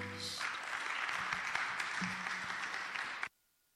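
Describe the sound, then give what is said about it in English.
A crowd bursts into steady, dense clapping that holds at an even level for about three seconds, then cuts off abruptly into silence; a brief voice tone precedes it. “I think you should clap a little more to encourage us.”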